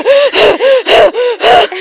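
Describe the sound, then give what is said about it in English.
A voice performs heavy huffing and puffing, like someone going up stairs, about seven loud, rapid breaths in a steady in-and-out rhythm, each with a raspy, slightly voiced edge and no words. “I'm huffing and puffing going up the stairs.”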